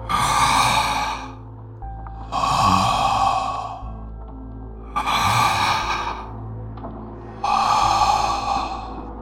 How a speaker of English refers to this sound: The handler waited there a few long seconds, breathing hoarsely, almost menacingly.